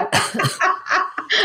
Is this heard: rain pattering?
no